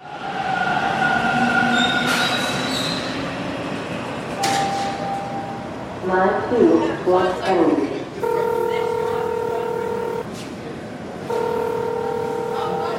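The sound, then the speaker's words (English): A subway train rumbles at an underground platform of Dufferin Station in Toronto, with wheels screeching and whining mid-clip, then steady electronic tones sounding twice over the continuous echoing roar. “I'm downstairs in Dufferin Station right now, just waiting for my train.”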